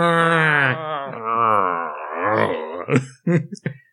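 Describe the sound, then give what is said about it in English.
A frog character, Bull, lets out a long, wavering, throaty moaning growl for nearly three seconds, then breaks into a few short, choppy grunts, growling instead of speaking. There is no speech. “And by the way, the moaning of women has been replaced by the moaning of frogs.”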